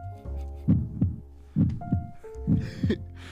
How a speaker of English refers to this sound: It's like a heartbeat, right?